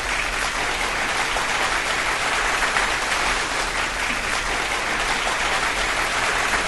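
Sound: applause sound effect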